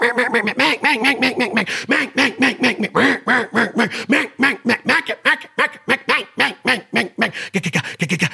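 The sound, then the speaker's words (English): A duck call blows a long run of loud hen quacks, starting in steady bursts and speeding into rapid, overlapping chatter, like several ducks calling at once. No one speaks. “And you're going to be able to hear like, whoa, that sounds like different ducks.”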